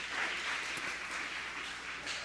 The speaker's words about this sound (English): So first off, I just want to kind of give a thanks and a round of applause to everyone who's spoken so far this summer. You've done a wonderful job.